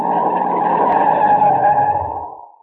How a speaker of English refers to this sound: We're coming to another turn. Okay, now brace yourselves. I'm shutting the brakes on hard.